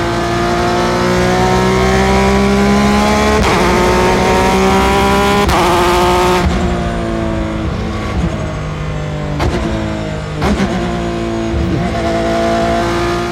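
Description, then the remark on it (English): A loud race car engine recorded onboard, its harmonic whine sweeping in pitch and breaking at several sharp downshifts that blip the revs, with no voices. “Like when they would downshift, it would do that. Sounds great though.”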